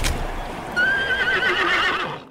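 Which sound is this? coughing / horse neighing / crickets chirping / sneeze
horse neighing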